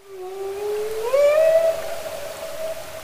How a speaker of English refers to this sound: That was a humpback whale in Glacier Bay National Park, Alaska. This is the time of year where they've arrived